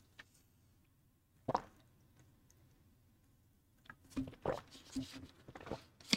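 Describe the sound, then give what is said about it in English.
Someone takes a drink of water during a break: a single soft knock or plop, a pause, then a run of quick wet gulps and small clicking swallows, fairly quiet, with no talking. “Excuse me. Sorry. Water break.”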